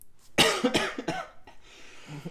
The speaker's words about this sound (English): I'm really coughing here, guys. I wasn't laughing, I was coughing.